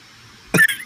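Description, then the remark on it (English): After a quiet moment, ice cubes clink and rattle against a rocks glass in one brief, bright burst, fairly loud, with no voices. “In my rocks glass with ice.”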